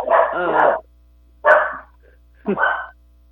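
A dog barks loudly: one long, drawn-out bark, then two shorter barks about a second apart, with silence between them.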